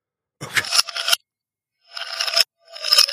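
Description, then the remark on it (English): Ice cubes clattering, played in reverse: three bright, rattling bursts that swell up and then cut off abruptly, with short silences between them and no voices. “Ice cubes? Yeah.”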